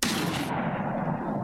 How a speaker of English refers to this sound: I saw the shot go right into the thing's shoulder, smacked me aside and howled with anger.